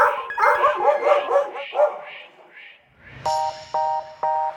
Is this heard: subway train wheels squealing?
no